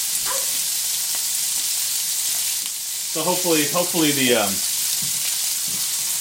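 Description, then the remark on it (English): Burgers sizzle in a pan with a steady, loud crackling hiss that runs the whole time, and a man speaks briefly over it near the end. “hopefully the smoke alarms won't go off.”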